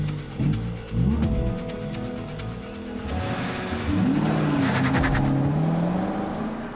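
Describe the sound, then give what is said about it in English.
A car engine revs hard in a street race, its pitch climbing and dropping through several bursts, then roars into acceleration with a rush of loud road noise and no voices. “I think I'm gonna race with a package in the back.”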